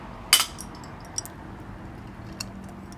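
Glasses clink together once in a bright toast with drinks, followed by a couple of faint light taps against a quiet, low background hum.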